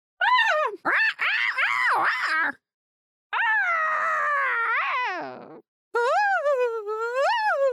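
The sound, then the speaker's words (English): A human voice imitates a common loon call: three long, wavering, rising and falling wails with gaps of silence between them, loud and strongly tonal. “That was a loon?”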